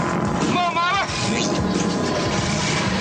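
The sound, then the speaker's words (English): Loud car engines start, roar and rev together at the start of the Gumball Rally race, a rising, wavering whine cutting through a dense, steady rumble that fills the whole stretch. “All right, ladies and gentlemen, start your engines!”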